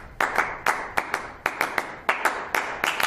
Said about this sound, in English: Imagine a world without clapping.